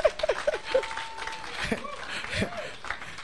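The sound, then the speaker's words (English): An audience gives a brief 'clap of faith': a burst of scattered clapping, a few quick sharp claps at the start, followed by overlapping voices and murmured cheering. “Oh, give a clap of faith.”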